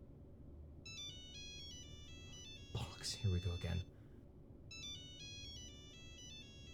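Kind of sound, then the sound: signal or alarm, mobile phone ringtone ringing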